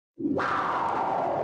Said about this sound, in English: That's called spaceship whoosh by. Anyways, that now okay. There's no sound in space. There's no spaceship whoosh by.